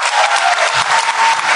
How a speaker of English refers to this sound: John Hodgman, everybody. Please give a round of applause to all of our wonderful actors.